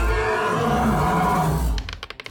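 A creature that crawled on all fours stands, coils back with its throat fully extended and uses its Shriek: a loud, harsh monster shriek that holds for nearly two seconds with rough, wavering tones, then cuts off into a short run of quick, rhythmic clicks.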